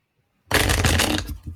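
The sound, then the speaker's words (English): A quick bridge shuffle of playing cards: after a moment of silence, a dense riffling burst of cards ruffling together for under a second, then a softer settling patter as the deck comes together. “I can do that little bridge thing you're doing.”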